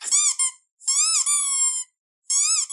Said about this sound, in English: Like a dog's toy, it always goes squeak, squeak. Oh, I know. Some toys, they have the sounds. Squeaky dog toy noise here, for example. This is a squeak.